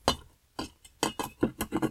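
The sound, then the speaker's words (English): Cherries, sugar and a splash of water from the sink being muddled in a glass: about nine dull knocks and clinks of the muddler against the glass bottom, in an uneven, quickening rhythm, with no voices. “We're going to muddle this up. The sugar and the cherries and that little bit of water.”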